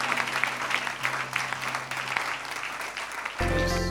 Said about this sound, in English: Can you give the Lord a big clap of praise?